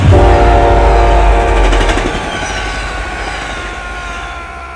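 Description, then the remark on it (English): A train roars past at close range, a heavy rumble with clattering wheels and a blaring horn tone, loudest at first and then easing slightly as it moves along the tracks. “The train held angrily by, and I was nearly pulled under the wheels by the slipstream”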